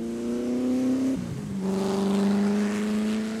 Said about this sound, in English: A GT40 exiting the chicane and going down the pit lane in the pouring rain.